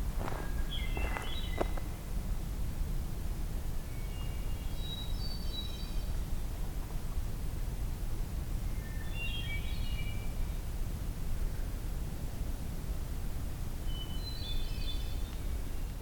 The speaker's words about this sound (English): Okay. It might be a magnolia warbler.